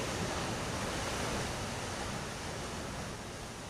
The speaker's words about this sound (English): But all of these sounds, even the sounds of waves, I live near the South Shore, so every now and then I just come out on my deck and I hear the sounds of rushing waves, the ocean dashing against the shore.